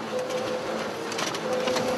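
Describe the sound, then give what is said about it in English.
A new high-tech printer, recently bought by the Copeland ministry, runs steadily while printing a document. Its motor whirs with a constant hum while quick mechanical clicks and swishes repeat as paper feeds through. No voices. “In fact, the ministry recently bought a new high-tech printer, which, according to the manufacturer, gives Copeland a finished document that looks 100% personalized.”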